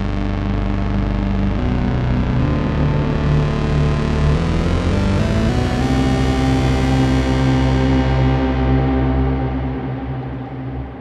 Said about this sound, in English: This is a new preset that I made on the Sub 37. I call it Fat Square. It kind of has a fat sound and it's squarish, kind of, I guess.